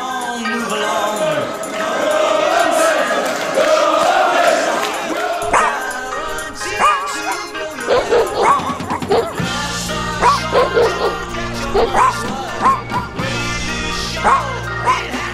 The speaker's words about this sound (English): Come on, bark for it. Bark for it. Let me hear you. Stand up and bark for it.